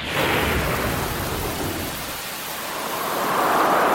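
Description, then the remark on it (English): A thunderstorm with steady rain hiss throughout; a deep roll of thunder rumbles through the first half, then fades as the downpour swells louder toward the end. “Storms are Australia's most costly natural disaster.”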